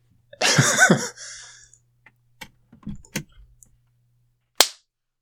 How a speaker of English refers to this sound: How'd you feel about that clap? It wasn't our best.